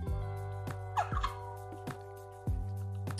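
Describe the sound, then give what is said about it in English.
A water bottle squeaks and pops during sips, a few sharp clicks over a steady low hum, with one brief wavering squeal in the middle. No one speaks. “If you heard that, my water bottle makes this weird sound when you sip from it.”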